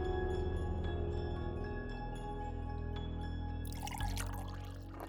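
Coffee pours steadily into a cup for several seconds, a continuous trickle over a low background hum, ending with a brief splashy dribble.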